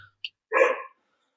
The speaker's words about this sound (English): barking at nothing. There's always something to bark at. God, there's nothing out there. I live on a private road. There's nothing out there. You're just barking at leaves, I guess.